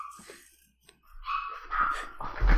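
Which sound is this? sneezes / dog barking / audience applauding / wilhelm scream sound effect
dog barking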